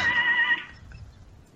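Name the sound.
donkey braying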